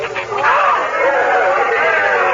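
A large crowd cheers in a loud, continuous roar of many overlapping voices as the Duke crosses the border, swelling after the first half second and holding steady with no single words standing out.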